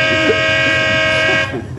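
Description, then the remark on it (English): A loud, sustained horn blares early one morning in one continuous honk with a bright, buzzy tone stacked with harmonics, then cuts off near the end, leaving low rumbling behind. “That crazy horn.”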